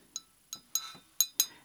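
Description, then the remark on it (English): A daiquiri glass clinks several times as it is handled while making a cocktail, producing five short, bright ringing taps in an uneven rhythm, with no voices. “Now, I know that this is a daiquiri glass.”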